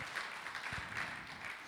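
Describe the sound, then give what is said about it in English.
A church audience claps together for a member of the audience in a steady, dense wash of applause that stays fairly quiet and even throughout, with no voices standing out. “Okay, let's clap for”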